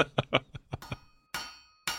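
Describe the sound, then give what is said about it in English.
Metal hammering in a character creation forge: a quick run of lighter clinking taps, then two loud, ringing blows that hang in the air, with no talking. “It is me hammering in the character creation forge.”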